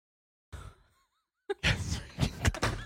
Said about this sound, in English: Slamming the door seems like there was something choice. About closing the door that really rubbed me the wrong way, and I don't know why.